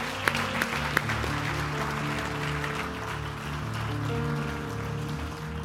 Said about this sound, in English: Come on, let's give him another hand clap of appreciation.